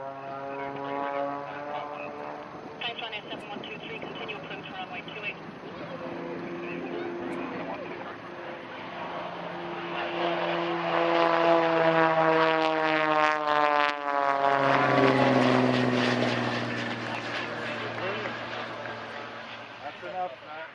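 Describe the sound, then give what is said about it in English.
A propeller aircraft's engine drones steadily at Dublin Airport, its humming tone shifting in pitch and swelling louder midway as the plane taxis down the runway, then easing slightly toward the end. “we had a wonderful send-off. Eddie Goggins facilitated with a little manoeuvre down the runway”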